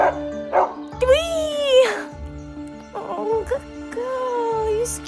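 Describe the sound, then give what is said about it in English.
A dog barks a few times in short bursts, mixed with drawn-out whiny yelps that rise and fall, fairly loud over a steady low background drone. “Silly old dog.”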